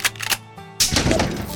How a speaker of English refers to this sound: Alright, what was that one? Cash register. Cash register again.